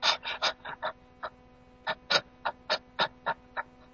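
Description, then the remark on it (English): A person imitates the rapid, shallow panting respiration of a medical symptom, like a panting dog, with about a dozen short, breathy huffs. A quick burst comes first, then a brief pause, then another steady run of rapid breaths. “It's panting respiration.”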